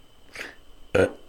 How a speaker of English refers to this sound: Did I just burp on air?